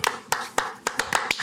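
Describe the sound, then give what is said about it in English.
People around a table playing a game of Dungeons & Dragons clap their hands together: about seven sharp, crisp claps in a loose, uneven rhythm that quickens slightly toward the end, with no voices over them. “Clap together.”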